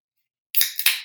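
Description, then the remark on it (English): A Bud Light beer can cracks open after a moment of silence: a sharp metallic snap followed by a second pop and a bright, hissing fizz. “Bud Light. Why? Because it's in my fridge. And on that note, let me crack this bad boy open”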